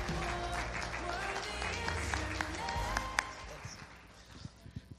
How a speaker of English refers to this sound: Everybody clap your hands. Give God a shout of praise that he's the God even in your both.